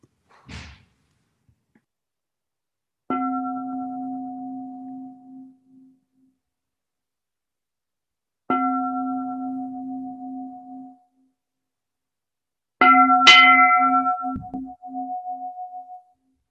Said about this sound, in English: Let's take a little bit of sound break. How about that? Just a moment of silence, just, you know, quiet for a minute. And I'm going to use the bell for that too.